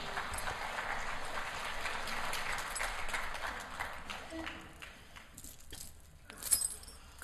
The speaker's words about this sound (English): Give our intern a round of applause, please.